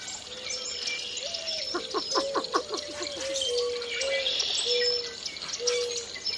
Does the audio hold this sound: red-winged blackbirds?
yes